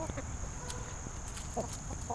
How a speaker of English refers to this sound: See, there they are, right there, the chickens. Oh, yeah. Look you at see? That. Yeah. So they're free-ranging chickens.